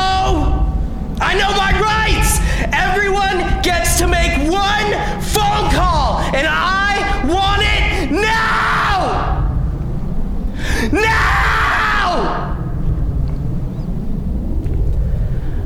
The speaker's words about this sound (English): Finally, I began screaming at the top of my lungs. Hey, you fuckers! I want my phone call! Nothing. That's the law, you know!